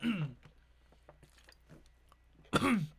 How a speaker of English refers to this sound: Oh boy, and I'm choking on water.